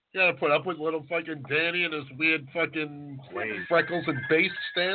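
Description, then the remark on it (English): A steady electronic tone from a man's phone rings out for a second or two under a man's continuous talking, fairly quiet and partly covered by his voice near the end. “Wait, that was my phone.”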